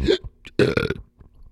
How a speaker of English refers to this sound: Excuse me. Sorry to everybody listening through the speakers at work or in the car. I just burped like a bastard.